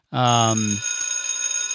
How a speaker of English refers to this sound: All right, class is out. Ring that bell